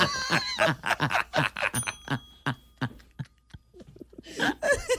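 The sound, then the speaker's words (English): A small bell rings with a bright, sustained chime that lingers briefly, among bursts of laughter and lively chatter. “Ring the bell.”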